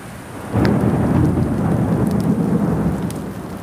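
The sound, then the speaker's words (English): Heavy rain pours steadily in a monsoon thunderstorm while a deep, rolling rumble of thunder swells in around half a second and lingers, loud, with no voices present. “The storm is this inverse winter's sweet respite. When it happens, you know why it is they call it the monsoon.”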